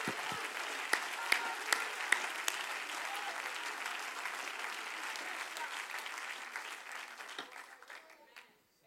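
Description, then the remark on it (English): An audience breaks into sustained applause with faith to God, a dense wash of clapping with a few sharper claps standing out early, holding steady before tapering off and fading out near the end. “If you believe that, why don't you applaud with faith the nature of our God?”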